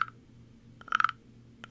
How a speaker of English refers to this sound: I can barely play the güiro over here with my frog guy.